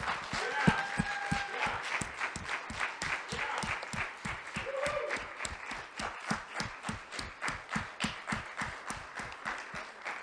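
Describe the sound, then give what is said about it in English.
A crowd claps steadily, the applause settling into a fairly regular rhythm of hand claps that carries on without a break for about ten seconds, with faint voices underneath. “So if you will just go ahead and clap with me because they are worthy.”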